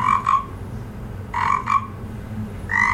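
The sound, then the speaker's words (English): A frog croak sound effect introducing the Fact Frog segment: two rapid pairs of bright croaks, with a third starting at the end over a low rumbling background, no talking. “Fact Frog here.”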